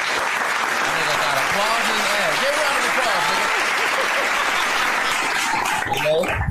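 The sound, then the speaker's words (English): A loud, steady round of applause on the Smokers Lounge show, dense clapping that holds for several seconds, with voices calling out and talking over the crowd noise before it cuts off near the end. “Round of applause, man.”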